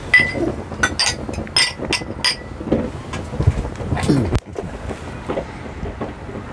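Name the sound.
glasses clinking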